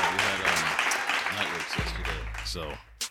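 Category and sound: crowd, people clapping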